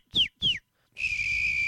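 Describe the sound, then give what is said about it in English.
Two short, bright whistled notes sliding downward, followed by a long, steady high whistle held without wavering. A professional whistler is whistling alone, clear and fairly loud, with no talking. “And how does one become a professional whistler, you might be asking yourselves?”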